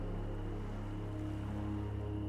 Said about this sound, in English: a soft lapping of waves.